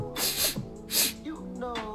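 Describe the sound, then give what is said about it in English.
A person imitates with their voice a woman sniffing at a smell coming from the kitchen, making two breathy, drawn-in sniffs, with brief hummed vocal sounds in between. “She's sniffing and she smells something coming from the kitchen.”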